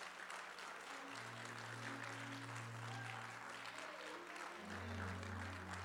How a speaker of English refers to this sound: Let's give our Lord a hand clap of praise.